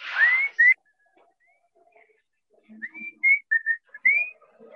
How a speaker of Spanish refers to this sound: Inclusive, una de las canciones del rock que es más conocida, y que de repente decían, ¿esta de quién es? Si a lo mejor te empiezo a chiflarla, vas a cantarla, ¿no?